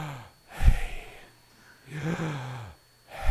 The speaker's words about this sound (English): So now we're going to try it as a breathing exercise. The first letter is Yah. Take it in. And hear the Yah.